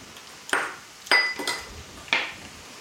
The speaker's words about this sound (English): Smashing some more garlic.